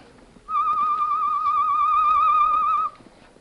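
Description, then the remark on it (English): A person whistles a bird call imitation as a signal to see if someone replies: one steady, slightly warbling high whistle held for about two and a half seconds, fairly loud, with no talking. “Sound the bird call, Tonto. We'll see if he replies.”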